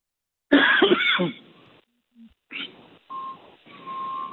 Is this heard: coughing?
yes